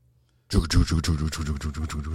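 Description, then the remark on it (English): After a brief silence, a man vocally imitates a train, aiming for a diesel locomotive, with a loud, rhythmic chugging of quick breathy puffs over a voiced hum, continuing steadily to the end. “All right, we'll start simple. Ready? A train. How's a train go?”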